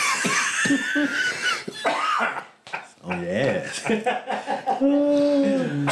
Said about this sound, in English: And when you're smoking, when you cough, makes you higher. You get higher, And now you're gonna cough obviously up. Because it's almost like getting choked.